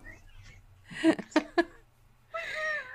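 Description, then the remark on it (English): A male cat that wants to go outside meows several times: three short, sharp cries in quick succession, then a pause before one longer, drawn-out meow, all heard alone without talk. “Us and our cats”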